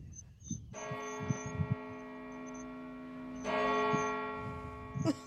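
Church bells in Oklahoma ring out at 10:23 in a steady, sustained peal, swelling louder partway through, with faint voices murmuring underneath.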